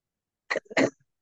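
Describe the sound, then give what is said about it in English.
Two quick, harsh coughs, the second one louder and slightly longer, with silence before and after and no talking. “I'm coughing now.”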